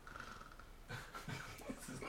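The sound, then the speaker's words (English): A person mimics snoring with a few rough, rhythmic breathy snorts, starting after a quiet moment and repeating about four times in quick succession. “I snore when I sleep.”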